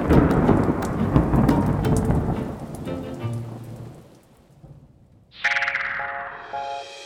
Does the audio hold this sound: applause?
no